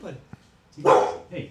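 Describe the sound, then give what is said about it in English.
A single deep, loud dog bark booms out, followed by a softer trailing huff, with faint voices in the background. “He got a deep bark.”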